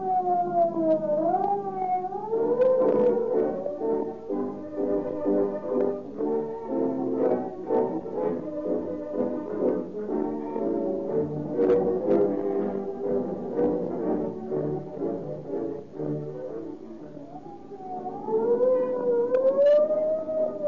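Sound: police siren wailing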